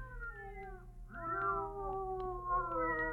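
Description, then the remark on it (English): Two cats meow in long, drawn-out, wavering cries, the second joining partway so the two overlap, over a steady low background hum, in a quiet house. “They're not ordinary cats. Listen to them.”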